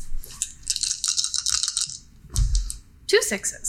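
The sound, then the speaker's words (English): Four dice rattle together in a cupped hand for about two seconds, then clatter briefly as they're tossed onto a surface, with a low thump and a short final clack; the roll shows two sixes. “That's four dice?”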